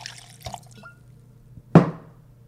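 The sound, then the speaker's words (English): A short splash of blanco tequila poured into a glass for a tequila cocktail, a brief bright gush that fades quickly, preceded by faint clinks and handling noises. “Tequila. Blanco.”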